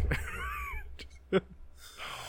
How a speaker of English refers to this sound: I'm yawning and you just ruined the fucking yawn.